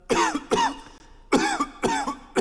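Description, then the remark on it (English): A person coughs five times in quick succession, two harsh coughs, a short pause, then three more, each loud with a raspy, voiced edge. “Okay, yeah, that's called a cough, and in a normal world, when someone does that, there's no alarm.”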